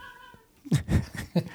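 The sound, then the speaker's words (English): A cat lets out a series of loud, drawn-out yowling meows, rising and wavering in a chattering, song-like rhythm after a brief quiet start, as the cat calls out to birds. “we're going to have a little pause here because the cat is singing Oti Dovselo, I think”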